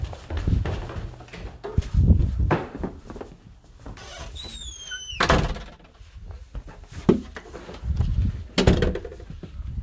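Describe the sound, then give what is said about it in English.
Zombies force a door open in the White House: heavy, irregular thuds and rattling blows, a sharp creaking squeal midway, and low rumbling scrapes, fairly loud, with no voices. “Zombies are right outside my door. Oh no, they're breaking in.”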